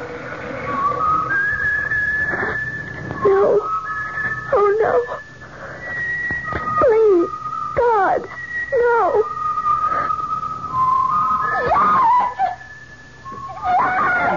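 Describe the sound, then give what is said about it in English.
A kettle boiling water for instant coffee whistles shrilly and continuously, its tone wavering and sliding up and down in pitch, with repeated swoops and warbles over a low background rumble. “Lucky I left the kettle out.”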